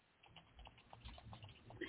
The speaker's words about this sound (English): I was typing.